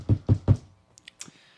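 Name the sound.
knocking on a door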